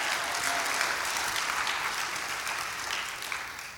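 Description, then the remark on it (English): A large crowd applauds the students who led a church student takeover service, a dense wash of many hands clapping at once that holds strong and tapers slightly toward the end, with no voices standing out. “So let's give them one more big round of applause.”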